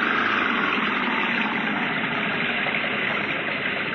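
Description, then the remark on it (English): A car engine roars loudly and continuously for a few seconds as it is given full throttle on a muddy road, a dense, steady mechanical drone with no voices over it. “Give it the gun”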